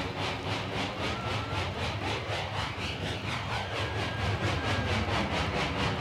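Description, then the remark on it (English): A steady synthesized rumble imitating a passing train, played live in concert by a musician on his synthesizer, with a pulsing, rhythmic chug and rising and falling whistle-like tones, loud and continuous without any voices. “But here, live in concert, … coaxes the train sounds out of his synthesizer.”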